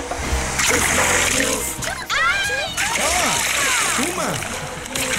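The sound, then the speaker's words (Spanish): A loud burst of splashing water as water mixed with chili is thrown onto a person, with sloshing that continues for several seconds while voices shout and react over it. “Le voy a tirar el agua con chile aquí a …”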